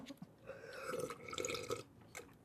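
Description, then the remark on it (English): A slurping sip of water with a wet, bubbly gurgle lasting about a second, followed by a couple of short swallowing clicks. “Oh yeah, let me get some of my trough water.”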